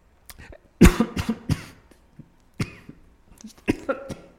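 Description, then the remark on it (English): A person coughs several times in harsh, irregular bursts, fairly loud, with a strong fit near the start and a few more scattered coughs trailing off after. “I don't have a cough button here.”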